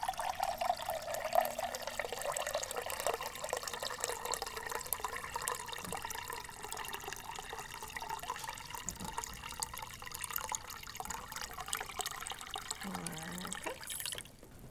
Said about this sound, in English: And I'm using a 4-cup Pyrex glass measuring cup. So now I'm going to add our water. I'm doing our filtered water.